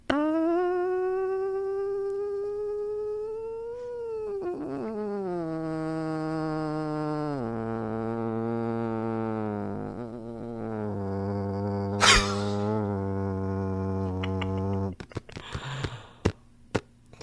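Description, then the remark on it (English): A voice imitates a long, drawn-out cow fart as methane gas is released from the cow: one continuous buzzing, harmonic tone lasting about fifteen seconds, stepping down in pitch several times before stopping, followed by a few faint clicks. “as he releases the methane gas from the cow. This all leaks out. It's a very slow, drawn-out thing.”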